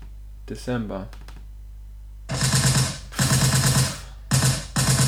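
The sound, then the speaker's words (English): A brief voice speaks at the start, then loud bursts of rapid automatic gunfire rattle out in several long volleys separated by short pauses. “More bloodshed, more gunshot.”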